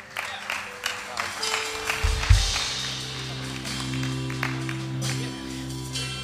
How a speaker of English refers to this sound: So let's give him a clap as he comes.